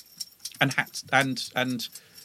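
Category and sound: animal, dog scratching itself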